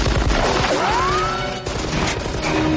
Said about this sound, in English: trading gunfire with the other two guys while he's walking up top, you know, real slow with his machine gun. And then when he opens fire, it's like...